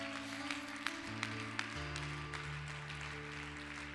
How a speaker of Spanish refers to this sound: Dele un aplauso a Dios fuerte.